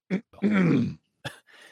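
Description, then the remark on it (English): A deliberate cough to interrupt an argument, followed by a drawn-out, voiced throat-clearing and another short cough, a pointed 'ahem' sequence with no talking over it. “Do you're like coughing? We're in the middle of something here.”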